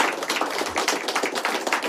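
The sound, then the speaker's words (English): A crowd claps steadily, dense overlapping hand claps forming a continuous, lively patter of applause with no voices. “They're clapping.”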